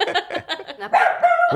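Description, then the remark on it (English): A dog named Ralph lets out a quick run of yappy barks at birds going past, ending in a drawn-out, whiny bark, with a person's voice mixed in among them. “What are you barking at, Ralph?”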